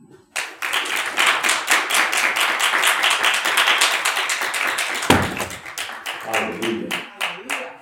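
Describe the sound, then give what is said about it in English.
A church audience on Communion Sunday claps their hands together in a steady, rhythmic beat, loud, sharp and dense throughout. Toward the end the claps thin out into more separate, spaced strikes. “Please clap your hands and join Pastor Tony.”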